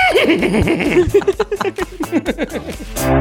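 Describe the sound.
Voices imitate a horse's neigh, a wavering whinny that rises and then breaks into a quick descending series of pulsing, shaky cries before ending abruptly with a burst of breath.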